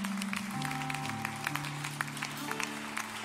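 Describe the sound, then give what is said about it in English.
An audience claps hands in a steady, dense burst of applause as a hand clap of praise to the Lord, lasting several seconds, over sustained low organ-like chords. No one speaks. “Let's give the Lord one more hand clap of praise tonight.”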